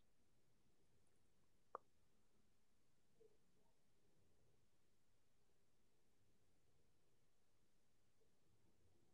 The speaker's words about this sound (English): Yeah, I think you disconnected for a second. Okay, no worries. Glad to hear that I'm back.